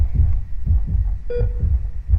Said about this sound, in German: Da schlägt plötzlich ein neues Herz, ein neuer Herzschlag, ein Herzschlag für ihn, ein neues Leben, wirklich ein brandneues Leben.